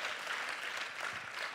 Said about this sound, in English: If you believe he's bigger than COVID, could you just clap your hands? Bigger than economies, clap your hands.